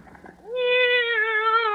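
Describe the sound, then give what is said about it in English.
A single long, drawn-out cat meow rises clearly and holds steady for over a second, fairly loud, following a brief stretch of faint, muffled rustling; a cat named Minerva being let out of a bag. “Oh, well, then maybe my cat can hide out here for the day.”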